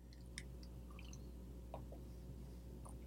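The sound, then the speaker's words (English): A few soft, wet slurping sounds of someone sipping coffee, fairly quiet, with small liquid clicks spread across a steady low background hum; no talking. “And yes, that was a sip of my coffee.”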